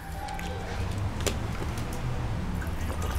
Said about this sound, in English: You already poured your water in there. Yeah, enjuagar.